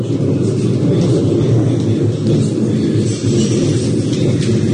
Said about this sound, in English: He's talking about thunder in Youghal at the moment. Have a listen to this. That is thunder.